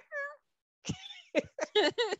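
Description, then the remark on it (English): A person's voice imitates a puppy's whimpers but ends up sounding like meowing cat cries: a short high whine, a pause, then four quick mewling yelps, fairly clear. “That sounded like a cat. I have to work on my dog.”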